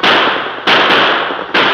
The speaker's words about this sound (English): The Lone Ranger and Tonto maintained spaced gunfire as they reduced the lead of the outlaws. Then one of the crooks suddenly clutched his arm.